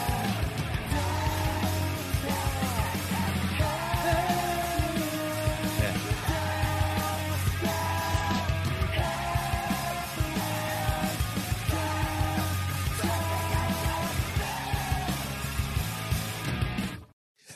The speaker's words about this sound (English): There's just the screams. Oh, yeah. Yeah.